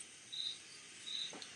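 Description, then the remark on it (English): Two short, high-pitched cricket chirps sound about a second apart over a steady insect hiss, fairly faint, played from a phone video, with no voices. “He ain't making noise, bro. He clapping his legs together, bro. And what noise is he making?”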